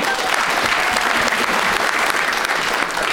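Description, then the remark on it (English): A full crowd at a panel show applauds a panelist steadily, many hands clapping in a dense, even wash of sound that stays loud and sustained throughout without fading. “Round of applause”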